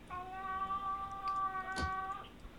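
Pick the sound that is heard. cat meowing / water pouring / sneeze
cat meowing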